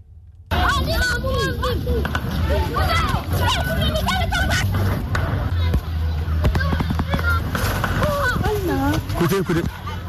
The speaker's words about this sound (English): What you're hearing there are gunshots echoing in Bawku as members of the Municipal Security Council find themselves engaged once more in a crucial meeting to address a recent spate of killings there.